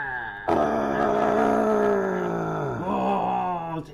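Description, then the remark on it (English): A voice imitates the scream of the legendary wild man creature: one loud, sustained, strained howl lasting over three seconds, its pitch sliding gradually downward, briefly breaking near the end before cutting off. “So was his scream, I wonder, was it manly or was it more screechy?”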